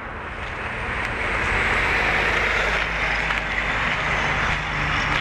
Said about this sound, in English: The sounds of the causeway up above here. So you're getting a lot more traffic sounds.